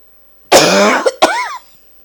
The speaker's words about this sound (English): I'm sorry for that coughing, but it maybe will be more to wake you up.